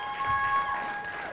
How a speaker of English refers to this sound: And so each one of the people behind me, give them a round of applause, right?